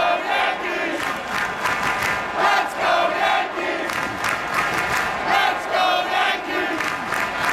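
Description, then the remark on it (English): A big baseball stadium crowd at a Yankees game against the Red Sox roars and chants together, loud and continuous, with rhythmic swells of shouting and screaming rising and falling every second or so, heard from a seat along the right field line in the first couple innings on a cool night in the low 70s. “It was just so electric and fun, and the people chanting, and we're all screaming along those first couple innings. Actual audio from my seat along that right field line.”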